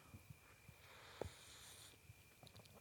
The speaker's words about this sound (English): Wait, let me have a sip of tea here. Hey, can you guys just relax and let me have a fucking sip of tea?